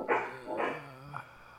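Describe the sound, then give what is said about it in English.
A dog barks twice in quick succession, loudly, then gives a shorter, softer third bark a moment later. No one speaks. “Well, my dog thinks it's the end of episode two.”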